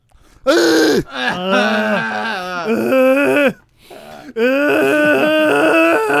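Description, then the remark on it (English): A voice imitates the scream of the character Tachibana: loud, strained, wavering cries with sliding pitch, a short break midway, then another long sustained howl. “just doing the fucking Tachibana scream.”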